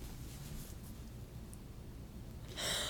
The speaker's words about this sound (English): She's trying to gasp for air.